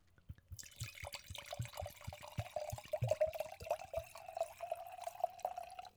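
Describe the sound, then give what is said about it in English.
Wine, a 2018 vintage Juggernaut, pours steadily into glasses: a gurgling, splashing stream whose pitch climbs as the glass fills, with a few soft clinks and no voices. “Now that we have, I guess our proper lubrication's all poured out.”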